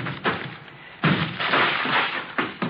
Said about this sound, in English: Yeah, Lieutenant. Breaking down the door.